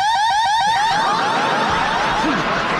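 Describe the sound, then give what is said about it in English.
A woman imitates a burglar alarm with her voice: a loud, rapidly warbling electronic-style wail that rises and falls in quick repeated cycles for a few seconds, with no talking. “I can do an impression of a burglar alarm.”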